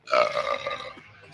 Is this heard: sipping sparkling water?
no